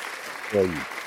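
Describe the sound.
A crowd claps steadily throughout, with one short voiced whoop of cheering rising over the clapping midway before fading back into the applause.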